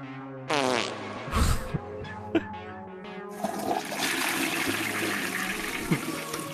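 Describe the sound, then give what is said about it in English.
Loud, buzzy fart sound effects played from a soundboard sputter and change pitch over several seconds, ending in a longer wet, rushing stretch with a few sharp pops, with no talking. “who else here has to cut a fart?”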